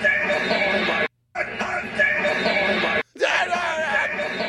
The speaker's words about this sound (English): You hear someone screaming like, we got him on it!